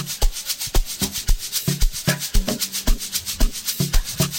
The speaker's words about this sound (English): It's the Egg Shakers, man. Yeah.